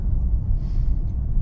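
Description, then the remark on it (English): A car not driven for two months is driven gently along a dry road with no snow or rain, its low engine and tyre rumble droning continuously at a constant level, with no voices. “Anyway, we're going to take it easy on this car for the first little while because it hasn't been driven in 2 months.”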